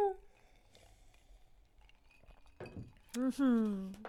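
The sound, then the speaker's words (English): Drinking glasses clink together in a toast, a short bright knock with a faint ringing tail, followed right after by a voice speaking. “Cheers. We're getting hammered.”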